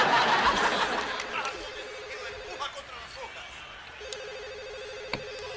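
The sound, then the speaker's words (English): A telephone rings unanswered, two long electronic ringing bursts separated by a short pause, fairly clear, with faint laughter and room murmur at the start. “You know, I figure if I'm always answering the phone, people will think I don't have a life.”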